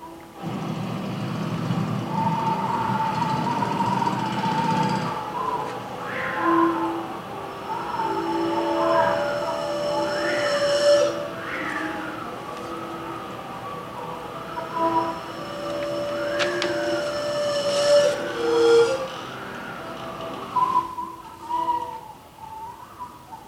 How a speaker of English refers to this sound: So we are basically recording the bamboo singing back to you after a storm which initiated the monsoonal rains coming through in middle of May, early May. So this is just half an hour after a very big storm.